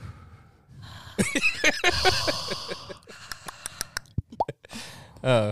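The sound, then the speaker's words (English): A leaky faucet drips: irregular wet plops and clicks, a dozen or so short drops, some with a falling pitch, following a stretch of breathy, hissy noise. “Anybody hear the leaky faucet?”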